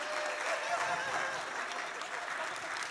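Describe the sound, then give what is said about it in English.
A church audience claps steadily throughout during the offering, a dense, continuous patter of many hands at a fairly loud, even level, with faint crowd murmur mixed in. “start clapping.”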